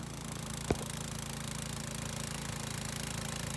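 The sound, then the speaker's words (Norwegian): A snow blower engine runs steadily with a low, throbbing, evenly pulsing drone that holds the same loudness throughout, broken once early by a brief sharp click. “For å se nærmere på snøfreserens funksjoner, så tenker jeg vi tar den med inn i varmen en tur.”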